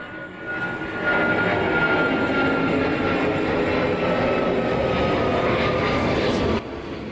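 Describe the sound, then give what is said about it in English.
A loud, steady jet roar of an airplane passing overhead, rising in the first second and holding at full strength before cutting off abruptly near the end, with no talking. “Hold on, we're going to wait on the airplane.”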